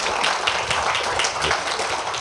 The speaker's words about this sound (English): Okay. Indeed, a round of applause, I think. Absolutely.